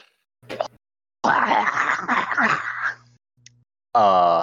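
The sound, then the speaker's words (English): A person vocally imitates a Deep One monster's shriek: a brief grunt, then a long, harsh, raspy screech lasting nearly two seconds, followed after a pause by a second monster joining with a more tonal wailing cry. “And it lets out a shriek and then is joined by a second one.”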